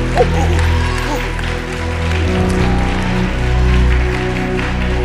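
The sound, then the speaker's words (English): An audience claps to heaven together in a dense, steady wash of applause lasting several seconds, with a sustained low musical drone underneath and a brief swell toward the end. “Now clap to heaven like the gift is, like that gift is coming right now.”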